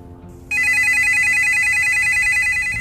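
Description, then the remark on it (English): A telephone rings for an incoming call to a live call-in program, a loud, steady electronic trill with a rapid pulsing warble that starts abruptly after a brief quiet moment and continues without pause. “Today, I will be answering phone calls regarding the topics we discussed in this episode.”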